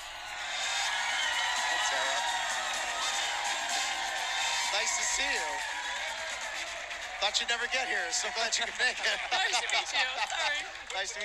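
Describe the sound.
A loud crowd roars and cheers in a dense wall of voices, then breaks into a rhythmic chant with repeated pulsing shouts toward the end.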